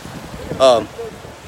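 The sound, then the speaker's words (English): Gusty wind buffets a microphone outdoors in Dubai, a steady low rumble running throughout, with a brief burst of a voice near the middle. “Oh, it's too windy out here”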